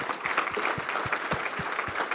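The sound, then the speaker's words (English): An audience claps hands together in praise for the Lord, a dense, steady wash of applause with a regular underlying beat, as if many are clapping in time. No one speaks over it. “Put your pen down and clap your hands for the Lord.”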